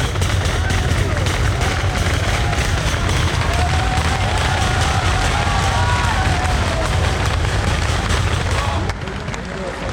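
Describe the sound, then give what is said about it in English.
A loud, dense roar of a roadside crowd cheering at a cycling race, with rapid, continuous banging on barriers sounding like a flurry of cracks and thumps, sustained throughout before easing slightly near the end. “Yeah, it's quite deafening here with everyone banging on the barriers.”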